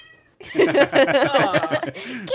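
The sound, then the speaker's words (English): A cat lets out a long, drawn-out yowling meow, loud and wavering in pitch for about two seconds, with no one talking over it. “My cat right now is lying on the ground chewing on my tax receipts.”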